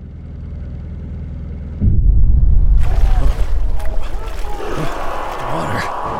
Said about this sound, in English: The engine. So comforting. Reminds me of Dad.